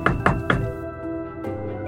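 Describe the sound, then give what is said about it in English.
Three firm, evenly spaced knocks on a front door land in quick succession, followed by a steady, droning musical hum that carries on underneath once the knocking stops. “The only people who showed up were family, and they didn't knock. So I slowly walked towards the door.”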